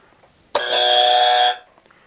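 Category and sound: signal or alarm, quiz buzzer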